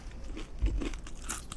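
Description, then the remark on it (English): Crunchy chewing of chips, a few brittle bites and crackly mouth sounds over about a second and a half, fairly quiet with a low thump near the middle and no talking. “Oh, I'm talking while you're chewing.”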